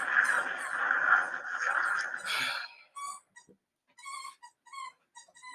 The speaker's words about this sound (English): Hopefully, y'all ain't hear the damn squeaky toy.